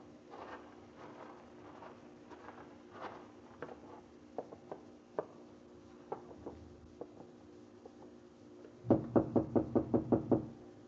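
After a quiet stretch of faint, scattered taps, someone raps rapidly on a wooden door, about eight firm knocks in a quick, even burst.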